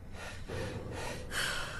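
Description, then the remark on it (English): Panicked, heavy breathing from a person trapped inside a room: a few loud, ragged breaths in quick succession with gasping edges, and no talking. “Calm down. Steady your breathing.”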